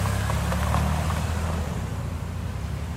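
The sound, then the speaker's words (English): A motor engine idles steadily with a deep, throbbing low rumble, continuous, easing slightly in intensity partway through. No one speaks. “Now, switch out the horse or horses for a motor, petrol, diesel, or even electric, and what you have is the modern car, the horseless carriage.”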